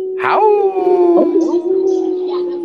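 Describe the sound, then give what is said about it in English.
A person imitates a wolf howl: a single loud, sustained vocal howl that sweeps up at the start, then holds a steady wavering tone for a couple of seconds. “Howl us out”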